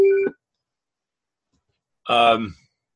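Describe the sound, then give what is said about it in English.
A phone ringer sounds twice: a short electronic tone, about two seconds of silence, then a richer ringing chirp. Both bursts are fairly loud. “sorry, I'm going to turn off my phone ringer here so that doesn't happen again.”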